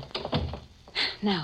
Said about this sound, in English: Come on, quick, so I can close the door again.